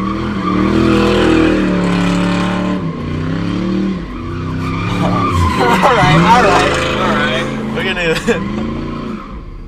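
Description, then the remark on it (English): A car's engine revs and surges as it spins in tight circles and figure eights right next to the speakers, doing donuts, tires screeching and skidding in wavering squeals, with voices faintly in the background. “Oh, they're doing donuts.”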